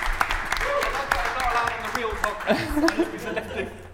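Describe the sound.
An audience applauds with a steady patter of many hands clapping, mixed with laughter and overlapping voices that grow livelier toward the end.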